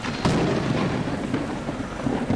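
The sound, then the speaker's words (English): Steady heavy rain pours down in New York City with a deep rumble of thunder rolling underneath, a dense, continuous wash of sound with no voices. “It's another rainy day in New York City.”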